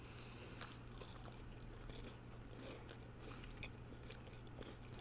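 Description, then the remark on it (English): Biting and chewing of a gooey chocolate chip cookie, crunchy outside and chewy inside, with scattered soft crunches and wet mouth sounds over a steady low hum, no talking. “That, like, crunch on the outside, but the chewiness and the chocolate melting on the inside.”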